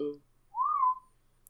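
A person whistles a short, clear note that slides up and holds for about half a second, right after a brief trailing bit of a voice.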